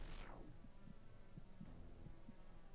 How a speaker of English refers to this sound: Oh, yeah. I heard it. So that's the heartbeat of a man who's had his blood sucked out once.